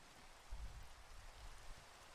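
Steady rainfall hisses evenly throughout, a soft continuous patter with a faint low rumble underneath. Fairly quiet and unbroken, with no voices.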